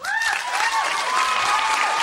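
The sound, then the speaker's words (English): An audience claps steadily to pick part two as their favorite Harry Potter film, a dense wash of many hands with no pauses. A few faint whistles rise through the noise. “Somebody said part one, but is the general applaud if it's part two?”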